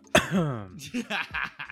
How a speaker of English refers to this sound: Let me clear my throat. I had COVID end of July, but I was good. But now I don't know. Maybe I have strep throat or a viral infection.